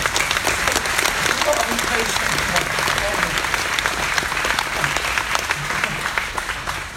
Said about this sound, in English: So please a round of applause for my coach.